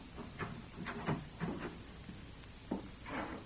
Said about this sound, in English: Then she tiptoed from the room and softly closed the door.